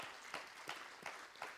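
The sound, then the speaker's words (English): A crowd of people applauds the fathers standing up at a Father's Day church service, with a steady wash of clapping and sharper claps about every third of a second giving it an even rhythm. There is no talking over it. “Father, if you've birthed a kid, give these guys a hand clap.”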